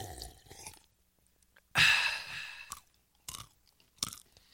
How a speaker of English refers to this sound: The close-up sound of someone sipping a drink and chewing a potato chip.